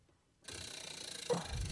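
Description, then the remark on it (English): A prize wheel whirs into a spin, its pointer clicking rapidly and steadily against the pegs in a continuous ratcheting rattle, with a soft thump near the end. “Give that fucking wheel a spin, dude.”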